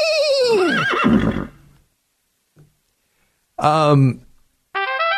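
A horse whinnies loudly: one long, quavering neigh that falls in pitch, then after a pause two shorter neighs in quick succession, the last one cut off.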